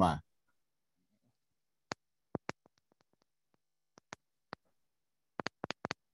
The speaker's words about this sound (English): We can hear you clicking your volume up.